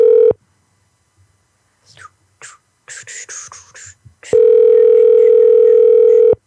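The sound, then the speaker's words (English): A steady, loud telephone tone cuts off, followed by a few short soft bursts like quiet whispering or keypresses, then the same flat tone returns and holds for about two seconds. “All right, we're calling a bar.”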